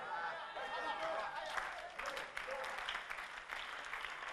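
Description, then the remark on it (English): An audience claps steadily for Jesus for a few seconds, a dense, even patter of many hands, with scattered raised voices from the crowd mixed in. “And those of you who are not clapping, give me one reason why you are not clapping for Jesus.”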